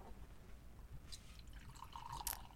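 Whiskey trickles into a glass in a couple of short, soft splashy bursts, ending with a brief rising glassy ring as the glass fills. Quiet, with no talking.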